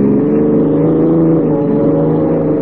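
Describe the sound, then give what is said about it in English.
A police car's engine roars steadily while the car is doing 70, a loud, continuous droning hum with a sustained pitch and no voices. “Hey, take it easy, Lefty. You're doing 70. Sure, this cop buggy can travel.”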